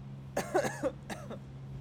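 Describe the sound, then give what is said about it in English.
Two short, raspy coughs, the first a quick double burst and the second a single hack, over a faint steady low hum. “I be coughing.”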